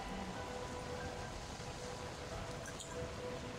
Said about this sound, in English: And there's the rain is pretty noisy.